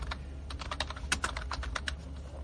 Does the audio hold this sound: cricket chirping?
no